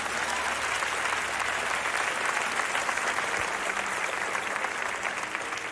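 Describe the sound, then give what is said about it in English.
A church audience claps steadily for several seconds after the sermon, a dense, even wash of applause that stays loud throughout without any speech over it. “Family, can we give a round of applause for an amazing word?”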